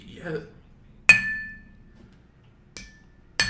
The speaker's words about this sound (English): Grab some glass. Mommy, fill daddy, whatever makes you happy. And we're going to give you a little baby clank. Just, okay. There we go.